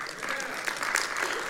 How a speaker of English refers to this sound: And I want to take a moment just to honor all the pastors here and our elders and our deacons and all of our leadership, because there's a tremendous godly group leading this fellowship. Amen. And amen. You can clap for them.